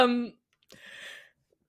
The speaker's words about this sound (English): Excuse me. Bless you. Is that your new thing? You're blessing people when they yawn?